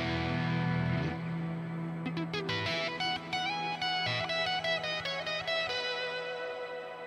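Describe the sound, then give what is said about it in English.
An electric guitar played through an AxeFX, whose big echo includes an octave-up pitch shifter, plays a sustained, effects-heavy passage where notes ring out with a long echo and a shimmering octave-up layer above them, loud and alone with no voices. “The big echo I have on the AxeFX there has that pitch shifter in it, which I like. So there's that octave up.”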